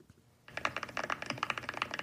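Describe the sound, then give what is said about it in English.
Rapid typing on a computer keyboard starts after a brief quiet moment, a dense, irregular stream of sharp clicks and clacks continuing steadily to the end, with no voices. “Yeah, you got the keyboards loaded up. Can you hear it?”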